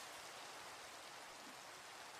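Steady rain falling, a soft, even hiss that stays constant throughout with no distinct drops or pauses and no voices.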